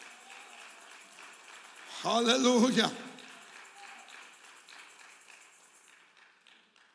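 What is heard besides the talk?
audience clapping hands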